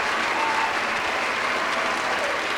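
A crowd applauds loudly and steadily, a dense wash of clapping hands with faint cheering mixed in, holding at an even level for a few seconds with no speech over it.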